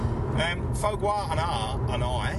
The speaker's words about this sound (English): are in the car on our way back from Bathurst. Yes, we're on the road again,